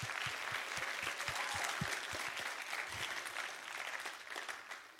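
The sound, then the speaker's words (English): An audience applauds steadily for about five seconds, dense overlapping hand claps forming a bright, sustained wash that tapers slightly toward the end, with no talking over it. “Come on, let's give them a clap.”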